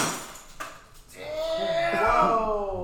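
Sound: glass breaking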